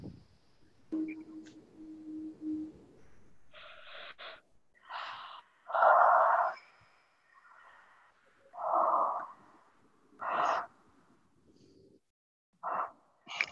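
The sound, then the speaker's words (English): A drawn-out yawn with several long breathy, gasping exhalations and sighs, fairly loud, coming in uneven bursts with short pauses between them and no talking. “Yawning on diligence.”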